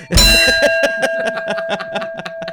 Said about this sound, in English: This is what they need. I mean, listen to that hearty bell. Do it again.